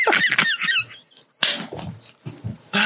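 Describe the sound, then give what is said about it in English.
Headphones get knocked off a door, landing with a sudden, fairly loud clatter after a few high squeaky chirps, then a softer rustle and a second sharp bump at the end. “You knocked your own fucking headphones off the door.”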